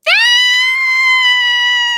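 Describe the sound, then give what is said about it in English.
A llama lets out one loud, shrill scream, a steady high-pitched wail held for about two seconds before cutting off abruptly, alone with no talking. “Oh, I was just a scream. I blanked out. That's okay, the llama did it.”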